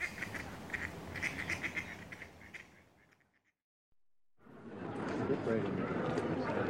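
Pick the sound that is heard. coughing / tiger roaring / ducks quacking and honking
ducks quacking and honking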